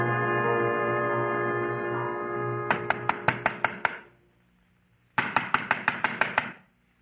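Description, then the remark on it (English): A sustained low, droning tone fades out as rapid knocking on the door of a junk peddler's shop begins: two quick bursts of about seven sharp raps each, separated by a short silence. “To knock on a door.”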